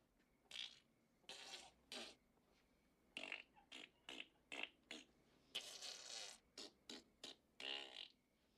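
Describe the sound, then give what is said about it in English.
A rapid, uneven string of about a dozen loud fart noises blown with the mouth as raspberries, some short and sputtering, others longer and buzzy. “Then he started farting.”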